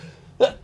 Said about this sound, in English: I sneezed.